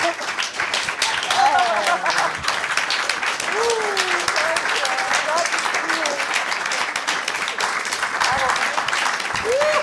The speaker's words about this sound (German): Und einen richtig, richtig langen, donnernden Applaus für die beiden, bitte.